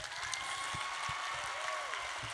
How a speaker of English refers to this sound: So a round of applause for everyone who's in here at the moment.